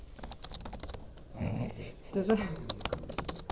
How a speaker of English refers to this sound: It's weird noise. Typing? Yeah, I don't like it. You don't like the sound of typing? No. Nowadays must be troubling because of all the Chromebooks around.